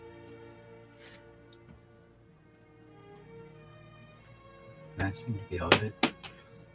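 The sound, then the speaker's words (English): A door bangs open loudly with a quick cluster of sharp thuds and rattles, breaking in suddenly over a steady, low tonal background hum. “And at this point, the door is going to slam open. That's what a door sounds like.”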